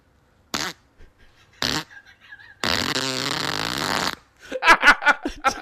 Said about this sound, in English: It had like three segments to it. It had like an unzip, a fart, and then a re-zip.